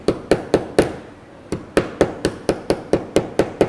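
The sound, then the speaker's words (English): A hammer taps sharply again and again as headers are hammered evenly into place on a Pi Zero circuit board, about a dozen bright strikes in a steady rhythm with one brief pause, loud with no talking. “I'm going to give it a couple more hammers, just for good measure.”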